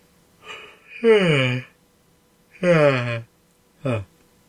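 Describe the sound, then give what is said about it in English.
A person yawns out loud: a breathy intake, then two long, drawn-out voiced yawns sliding downward in pitch, followed by a brief shorter one. No words are spoken. “It's not very good podcasting, is it, yawning on the podcast?”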